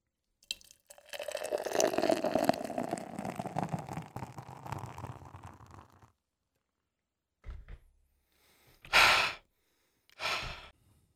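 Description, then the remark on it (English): A Danny Trejo beer pours steadily into a glass for several seconds with a gurgling, ringing tone, then stops; a few short breathy exhales or sighs follow. “Let's pour this out and see what Danny Trejo has in store for us, man.”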